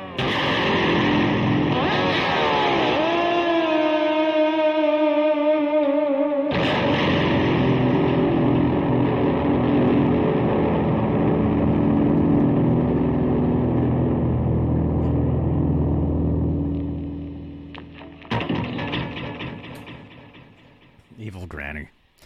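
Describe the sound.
An electric guitar mimics a croaking, cackling old woman's voice with warbling, sliding bent notes, played loud and sustained, with a sharp break partway and a choppy, stuttering finish.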